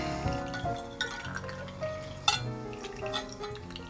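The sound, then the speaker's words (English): Coffee trickles and drips slowly through a pour-over filter, the fine grounds getting stuck in the filter, a quiet patter of liquid with a few light clinks from the brewing gear, no voices. “And I think my grounds, I think the same problem I had last week is the grounds are just a little too small and they're getting stuck in the filter.”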